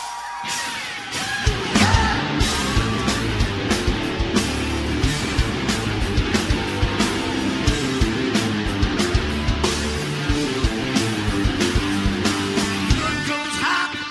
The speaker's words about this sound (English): We're going to stick with another song from ….